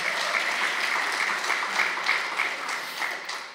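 Steady audience applause congratulating someone on getting a master's degree, a dense crackle of many hands clapping at an even level before tapering slightly at the end. No one speaks over it.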